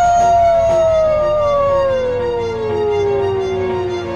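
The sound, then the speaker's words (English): A wolf called Frankie, coming out of a door, gives a single loud, drawn-out howl that slides slowly downward in pitch over about four seconds, sustained and tonal above a steady, noisy background. “And then you see one of these animals coming out of the door. Is a wolf.”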